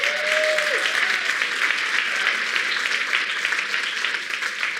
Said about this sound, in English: So I am grateful for the enthusiasm and the applause